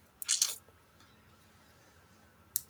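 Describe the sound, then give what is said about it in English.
A quick cluster of sharp clicks as someone clicks through a PowerPoint slideshow, then a pause and one more click near the end, with near silence in between. “Did you make a slideshow of yourself or something? You're clicking through it?”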